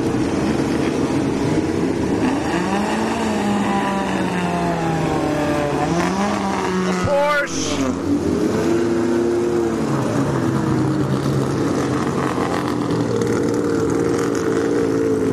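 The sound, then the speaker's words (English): Classic sports car engines, including an MGB, a Triumph, a Daimler, a Volvo and an Austin Healey, drone steadily as the cars drive past on a racetrack, revs rising and falling, with one car sweeping past midway through. No one speaks. “Many of these cars I've seen before at Mossport over the years. There goes an MGB.”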